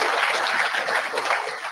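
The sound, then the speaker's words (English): A crowd applauds an honoree for 4 million miles in a steady, dense wash of clapping that holds at an even loudness for a couple of seconds, with no voices cutting through. “Big round of applause”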